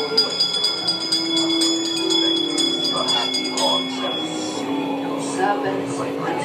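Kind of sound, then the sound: signal or alarm, bell ringing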